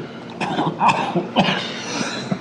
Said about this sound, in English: The guy in the end takes a big fucking rip off the bong and then has a coughing fit for quite a while.